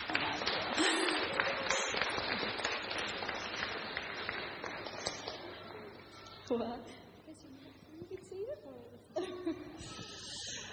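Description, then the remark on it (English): A church audience claps on a morning to welcome a woman up for an interview, a dense, crackling wash of applause that thins out over several seconds, with a few voices and scattered cheers rising near the end. “So if you could all just welcome her up with a round of applause.”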